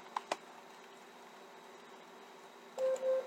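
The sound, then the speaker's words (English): An Alexa smart speaker timer alarm starts near the end, sounding repeated mid-pitched electronic tones in a steady pulsing rhythm, after a quiet stretch with two brief clicks at the start. No one speaks. “Alexa, stop timer.”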